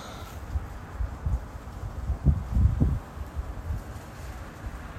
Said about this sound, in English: I really do hope you can hear the sound of those palm fronds rustling. It's really kind of soothing.